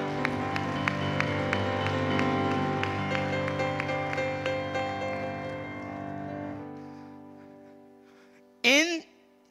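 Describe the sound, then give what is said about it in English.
Steady rhythmic clapping from a group keeps time over a sustained organ or keyboard chord, fading out near the end before a brief swooping tone. “Clap if you're gonna clap.”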